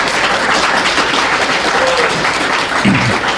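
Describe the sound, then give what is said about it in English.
A steady wash of audience applause at the Rocky Mountain FurCon convention for the convention chair, many hands clapping densely and continuously at a fairly loud, even level for a few seconds, with a faint voice briefly surfacing near the end. “Our chair is in the audience with us, so if you guys have had fun at this convention, please give him a hand.”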